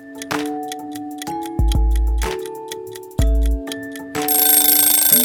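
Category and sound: household object, kitchen timer going off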